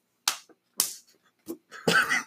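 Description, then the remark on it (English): A quick series of hand slaps and smacks from a handshake made up on the spot: two sharp slaps, a softer tap, then a louder, rougher clap-and-grab burst to finish. “We just made a handshake right on the spot.”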